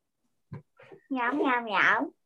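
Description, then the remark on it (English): A child mimics a cat meowing: two brief soft sounds, then a long, loud, high-pitched meow that rises and falls. “Meow, meow, meow. Meow, meow, meow. Oh, we're talking cat language.”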